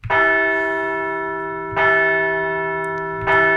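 A bell rings out loudly three times at a steady, unhurried pace, each strike leaving a long, shimmering hum that carries into the next. No voices are heard.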